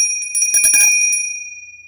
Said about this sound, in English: but I got a bell for you.